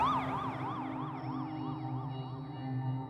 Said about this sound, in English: And pretty soon you would just hear fire trucks going from everywhere.